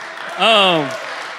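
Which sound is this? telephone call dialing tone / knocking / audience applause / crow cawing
audience applause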